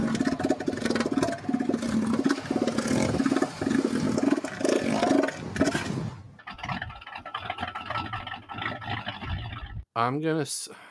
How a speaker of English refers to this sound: So it's an elephant seal. Oh, okay. Didn't know they would make sounds like that. That's insane to me.